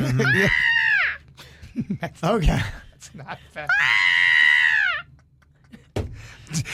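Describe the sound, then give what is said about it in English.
A person imitates a screaming goat with two loud, strained, bleating yells about a second each, separated by brief chatter and laughter from others. “I feel like I could do the goat. You know how they had those screaming goats”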